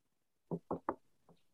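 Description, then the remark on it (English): Knuckles rap on wood: three quick, solid knocks in a row, then a softer fourth knock after a short pause, with no voices. “Kind of knock on wood, are things going okay for y'all first release?”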